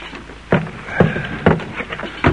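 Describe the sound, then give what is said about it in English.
Oars muffled with petticoat cloth pull a rowboat on the flood tide toward the Charlestown shore, with four soft, muffled strokes landing in a steady rhythm about every half second over a low wash of lapping water. No voices. “Past HMS Somerset with her 64 guns they slipped, on the flood tide, with petticoat muffled oars, and so on to the Charlestown shore.”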